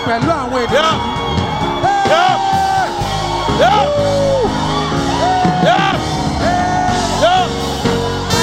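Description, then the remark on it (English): An audience shouts and whoops in joyful celebration, many voices overlapping loudly and continuously, with rising and falling cries ringing out above a dense crowd roar. “Since it is streams of joy. And it is shouts of joy. We are going to joy with these people.”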